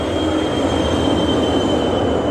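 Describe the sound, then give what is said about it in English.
A truck rumbles by, a loud, steady roar of engine and road noise with a thin whine riding on top, holding constant throughout with no voices. “And we've just got a truck driving past, if you can hear that.”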